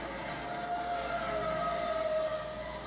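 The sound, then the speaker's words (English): A distributed power locomotive placed mid-train runs wide open at full throttle, pulling its part of freight train QO26, a long train of truck trailers moving by rail. A constant loud droning rumble with a sustained whining tone on top, without any talking. “That DP unit is not idling anymore. He's running wide open, pulling his part of QO26.”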